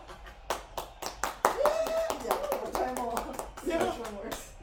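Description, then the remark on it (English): An applause sound effect: a steady patter of many hands clapping, fairly loud, with cheering and voices rising through the middle and lasting to the end. “Hit the applause sound effect”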